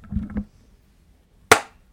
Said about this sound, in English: I need to clap.